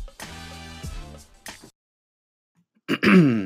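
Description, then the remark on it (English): Someone clears their throat in a couple of rough, voiced bursts. After a short silence, a voice starts up again. “Had to clear my throat there.”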